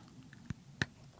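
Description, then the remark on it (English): Two distinct crunches as someone chews a crunchy Earl Grey-flavoured snack, quiet and sharp, separated by a brief pause with faint mouth sounds and no talking. “Ooh, that was a good crunch.”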